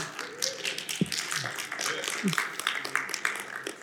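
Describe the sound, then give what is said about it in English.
A few scattered, sparse claps from a small group of listeners during a morning sermon, irregular, with faint murmur and some voices in the background. “I got a couple of clappers.”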